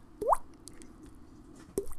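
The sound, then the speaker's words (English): Someone imitates a dripping leaky faucet with their mouth: two wet, upward-bending plops about a second and a half apart, clear with no talking. “please give us a couple of drips. I need a leaky faucet real quick.”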